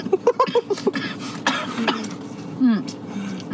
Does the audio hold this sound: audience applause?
no